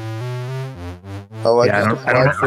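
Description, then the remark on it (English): A synthesizer, its knobs being turned, plays sustained, buzzy tones that step between pitches, then swells into a louder, brighter, smeared wash as an echo effect piles up, loud. “I'm just turning knobs and echoing.”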